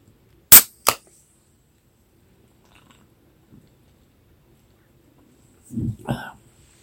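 Two sharp, loud rifle shots crack in quick succession, followed by near silence and then a brief low, muffled rumble toward the end.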